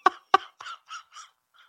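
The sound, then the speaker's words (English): A crow caws repeatedly, about six harsh calls in quick succession over under two seconds, the first two loudest and the rest fading off as if the bird is moving away. “The crow probably pecked someone to death.”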